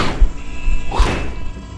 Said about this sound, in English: You cast your gaze back, and you can see gates, basically, portcullises, falling from the ceiling at various points.